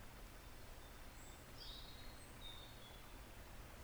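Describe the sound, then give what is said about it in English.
Faint birds in a garden chirp a few brief, high whistles against a steady hushed outdoor background. No one speaks, and the calls come sparsely rather than as continuous song. “Just the sound of the birds.”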